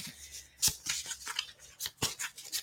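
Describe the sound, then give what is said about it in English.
Quiet papery shuffling of a card deck with crisp flicks, broken by a few sharp knocks on the deck at irregular intervals, with no voices. “So let's see, I'm just doing a little light shuffling. I'm going to go ahead and move my microphone here. Do a little knock again.”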